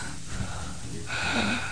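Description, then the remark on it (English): A voice mimics heavy, rasping breathing, like a silent caller from an unknown number, with a noisy exhale swelling into a louder, wheezy breath. No words are spoken. “It's just silence and breathing, like.”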